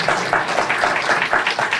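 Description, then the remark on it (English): A live audience of about 600 people at the Cato Institute applauds, a dense, steady wash of many hands clapping at once, fairly loud and even throughout with no voices standing out. “I couldn't know if you could tell from the applause at home.”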